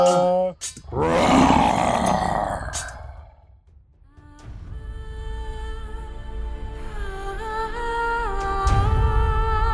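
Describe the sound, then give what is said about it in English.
A lion, presented as Aslan from Narnia, lets out one loud, rumbling roar near the start, lasting a couple of seconds, then fades out before sustained orchestral-style music tones swell and continue to the end. “Our cat is an awesome cat. He roars from Narnia.”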